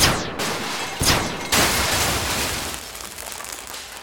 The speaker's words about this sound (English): Okay, we should be all right. Simple blaster rig for when the door opened.